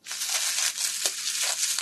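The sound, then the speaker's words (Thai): A plastic carrier bag crinkles and rustles as someone opens it to take things out, continuously for about two seconds, a bright, crackly noise with a few sharper crunches, moderately loud and with no voices. “บางคนที่เขาใช้ถุงพลาสติกที่เป็นถุงก๊อบแก๊บเนี่ยดูฟังเวลาจะเปิดของออกมาเสียงมันจะเป็นอย่างนี”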